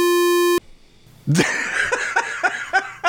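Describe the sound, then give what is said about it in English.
A loud, steady censor beep with a buzzy, harmonic-rich tone lasts about half a second and cuts off abruptly. After a short quiet gap, rhythmic bursts of laughter follow. “You can beep that out.”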